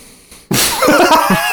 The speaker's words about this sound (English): Glass against glass. I have to... No, I have to drink it. Well, yeah, I am drinking out of a... More likely than not, stolen Buca di Beppo.